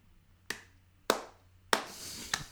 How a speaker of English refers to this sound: I'm clapping for Arsenal.